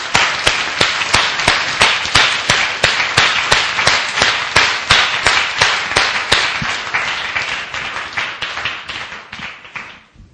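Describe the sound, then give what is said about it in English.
A church audience claps hands as a clap offering to the Lord Jesus Christ, in a loud, steady rhythm, sharp claps about four per second over a dense wash of crowd noise, tapering slightly toward the end with no talking. “Give a clap offering to the Lord Jesus Christ.”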